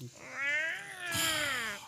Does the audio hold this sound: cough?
no